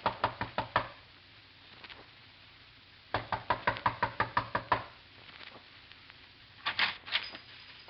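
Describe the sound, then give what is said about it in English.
Knocking on the door of Joe Polan's home in quick bursts: a run of about five raps, a pause, then a longer series of about nine, followed by a few faint taps. No talking. “A knock.”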